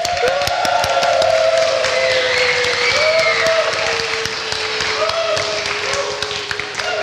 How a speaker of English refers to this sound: Wow, that's fairly extensive clapping.